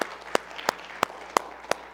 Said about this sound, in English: Let's give him one more hand clap, if you wouldn't mind, together, please.